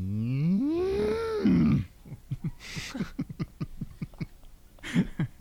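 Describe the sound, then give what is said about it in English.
A person gives one loud, drawn-out cow moo imitation lasting nearly two seconds, rising then sinking in pitch, followed by quieter conversational talk. “People may think that's such a good that's cow what noise.”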